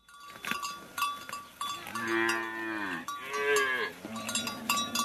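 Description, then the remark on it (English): Cattle low in long, drawn-out calls, with two prominent moos, while cowbells clank and jingle steadily throughout, as a 77-year-old Maasai herder brings a herd of 50 cattle home for the night at dusk in Kenya's Southern Rift Valley. “brings 50 head of cattle home for the night.”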